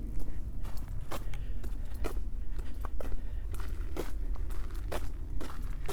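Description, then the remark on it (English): Steady footsteps crunch along a country lane on the way to Surbiton, about two per second, over a constant low rumble; each step is a sharp, gritty scuff, with no voices. “Walking along a country lane on my way to Surbiton.”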